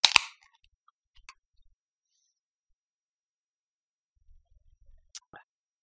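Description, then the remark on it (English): A can of Allagash beer cracks open with one sharp pop and a brief fizzing hiss, followed by quiet clicks and handling noises, then another short snap near the end. No one speaks. “I'm sad and drink beer. So we crack in honor of us, to us, for us, and nothing but the us.”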